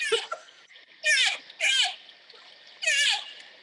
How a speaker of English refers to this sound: Yeah, there's a moose on the screen doing the noise. Fuck off, no. Yeah, wow, like a baby. This is revolutionary. Is that a baby moose? That was a baby moose.